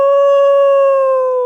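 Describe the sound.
A person imitates a wolf howl with one long, steady, loud note held for over a second, its pitch sagging slightly at the end. No other sounds or talk accompany it.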